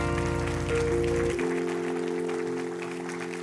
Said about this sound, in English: God bless you. Congratulations. Keep clapping for Jesus.